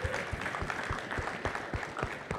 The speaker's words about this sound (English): Y'all give another round of applause for that, man. That was fantastic.